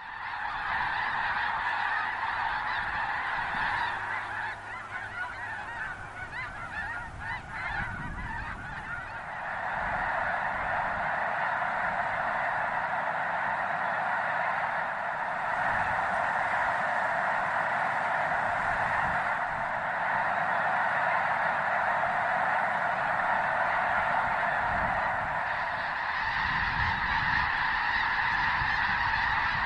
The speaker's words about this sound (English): We leave you this Sunday morning at Lake Byron in South Dakota, where 'tis the season for geese to migrate south.